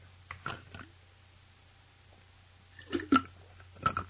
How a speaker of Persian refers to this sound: ببخشید سکسکم گرفت، بذار آب بخورم.